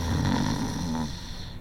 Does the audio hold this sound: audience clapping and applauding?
no